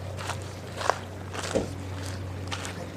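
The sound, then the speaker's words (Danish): Footsteps of people walking outdoors by Skudhavnen harbour in the evening: about four crunchy, scuffing steps at a slow, steady pace over a constant low hum, with no one speaking. “Ja, vi går hernede ved Skudhavnen.”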